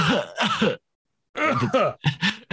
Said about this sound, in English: Why is he like, oh my God. You hear like a prison cough.